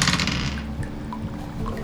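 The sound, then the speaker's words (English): A short rattle of dice tumbling across a hard surface during a tabletop role-playing game, a burst of clatter that settles into a few faint clicks as they come to rest, the roll showing an 8. No one speaks. “Dice roll under the looks like an 8, which I assume is not equal to your defense.”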